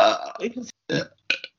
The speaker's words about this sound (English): And on that note, that is exactly the same as the burp that I did when I tested my microphone.